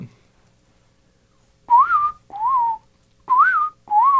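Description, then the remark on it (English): A person whistles an imitation of an American robin's call: four short, clear, warbling phrases in pairs, each rising and falling in pitch, loud against silence with no talking. “So that's your classic robin.”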